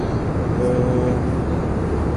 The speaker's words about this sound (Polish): Samolotem troszkę rzuca, jest turbulencja